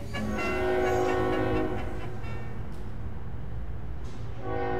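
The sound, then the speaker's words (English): A steam train's horn blows a sustained, harmonic blast for about two seconds over the heavy, continuous rumble of rail cars rolling past, with a few metallic clanks near the end. “And, of course, the railroad was expanding rapidly.”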